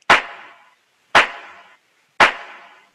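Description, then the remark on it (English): Three sharp, bright handclap hits from a simple clap sample track in Ableton, played dry without the delay and utility plugins, spaced evenly about a second apart, each with a quick attack and a short fading tail, with no other sounds in between. “That is just a simple clap.”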